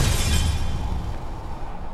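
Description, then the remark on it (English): An exterior wall bursts apart in a loud, booming explosion caused by a Destructive Wave spell, heavy low rumble mixed with crackling, shattering debris that gradually fades over two seconds. No one speaks. “The wall explodes up.”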